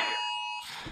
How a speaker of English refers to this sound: What is going on? Phone. Oh, is it your phone? Yeah.